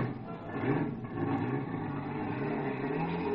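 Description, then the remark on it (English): A car engine runs loud, its steady mechanical drone rising slightly as it revs and accelerates, the car just started and driven off with the accelerator floored, with no voices over it. “Some poor guy was just starting his car. I grabbed him by the neck and threw him out, and I took the wheel.”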